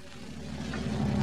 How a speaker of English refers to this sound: Now back in the bus station, we find Fibber McGee and Molly watching the bus pull in.